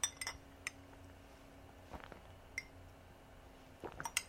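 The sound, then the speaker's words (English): Someone takes a drink of water from a glass: a few bright, ringing clinks of glass against a hard surface, soft handling and swallowing noises in between, over a steady low hum, with no talking. “Let me take a drink of water first, actually.”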